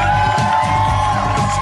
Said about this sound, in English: From Hollywood, California, Harmontown is now in session. Won't you please keep those applause going and welcome to the stage the mayor of Harmontown, Dan Harmon.